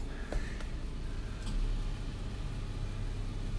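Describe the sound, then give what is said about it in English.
A car engine idles at a coffee drive-through with three cars in line, a steady, continuous low rumble and a faint hiss, broken by a few brief clicks early on; no one speaks. “Again, three cars in. Three cars.”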